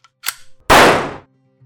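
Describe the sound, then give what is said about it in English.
A short metallic click, then one loud gunshot, an execution shot to the head, that cracks sharply and fades over about half a second, followed by quiet. “And with that, his life ended with a single gunshot to the head.”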